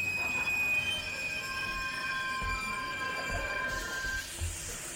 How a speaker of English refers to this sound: Dreams of vagrant Parises and boysenberry pies cooling on the great windowsill in the sky are suddenly dispelled when the train screeches, as trains do, to a sudden halt.